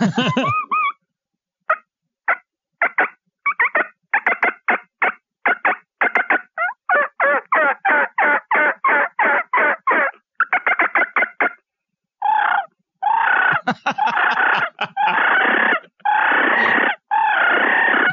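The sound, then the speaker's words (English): A rapid run of sharp turkey yelps and cutts blown on a mouth call, building into loud, raspy, aggressive cackling bursts, with no talking. “Now, can you give us a sequence of calls that you well, would use?”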